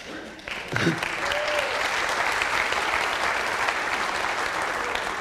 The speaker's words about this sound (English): It's a great song. We love it. We just clapped for it.